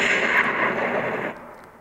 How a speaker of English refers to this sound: Yeah. Bless you. Sorry. Excuse you. The sound effects are really lifelike.